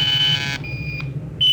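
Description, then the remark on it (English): An automatic tracking signal from a spaceship beeping: a loud, piercing high-pitched tone, then a fainter echoing tone, and the loud tone quickly returns over a low steady hum. “The echo's bouncing back so fast, it's almost beating the signal.”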